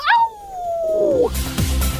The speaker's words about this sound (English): But one thing remains constant throughout. Wolves are regularly shown at howling at the moon.